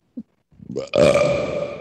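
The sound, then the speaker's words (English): A long, loud burp swells from a low rumble into a sustained croaking tone, smeared by an artificial echo effect that keeps it ringing to the end; a tiny blip comes first. “That echo feature is undefeated”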